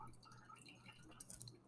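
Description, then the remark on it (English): Juice drips and trickles steadily through a strainer, a soft continuous patter of liquid, fairly quiet, with no voices over it. “I think yours, I just kind of poured it all out. Yeah, it's fine. And let it strain.”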